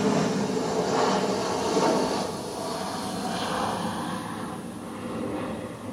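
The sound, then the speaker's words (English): A steady, broad roar of an airplane passing overhead fills the whole clip, swelling slightly early on and easing a little later, with a low rumble underneath and no one talking. “Try to wait till the airplane pass by.”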